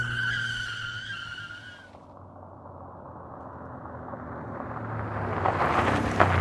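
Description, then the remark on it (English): A truck screeches its tires for a couple of seconds, then accelerates hard with a rising engine roar as the driver floors the pedal and races forward, growing louder toward the end. “He punched the steering wheel and instantly realized that's not what I meant, but then put the pedal to the metal and raced forward.”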